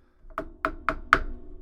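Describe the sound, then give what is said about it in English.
A gavel knocks four times in a quick, even rhythm, each sharp wooden strike ringing briefly, the last one loudest, over a low background hum with no talking. “That was the official gavel to Chris File.”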